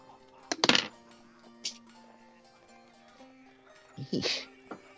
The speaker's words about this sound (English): I need everybody to roll me a D10 again.